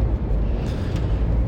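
A steady, low rumbling drone of road noise inside a car driving early in the morning on the 80, about to get on the 580 toward the Richmond–San Rafael Bridge across the bay, constant and fairly loud throughout with no other distinct sounds.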